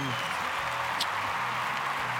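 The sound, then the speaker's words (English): Steady crowd applause, a dense wash of many hands clapping at an even level, with a brief bright whistle or shout cutting through about halfway. “We got a good crowd tonight. Listen to it.”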